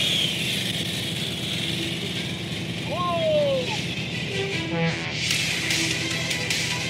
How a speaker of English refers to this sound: Today we're at Alameda, just outside San Francisco. And we've been making a robot ride a motorbike. So this is a stock motorcycle.